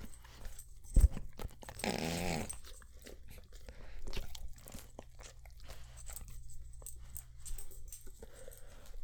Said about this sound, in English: My dog. That was my dog.